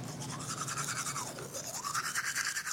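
Someone brushes their teeth with quick, steady back-and-forth scrubbing strokes, a bristly, wet rasp repeating in an even rhythm throughout, with no voices.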